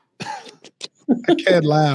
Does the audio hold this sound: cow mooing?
no